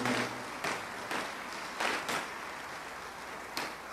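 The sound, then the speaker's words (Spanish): An audience breaks into sustained applause for the King of Kings and Lord of Lords, a dense wash of many hands clapping with a few sharper bursts rising above the steady roar, no voices audible. “¿Cuántos dan un fuerte aplauso al Rey de Reyes y Señor de Señores?”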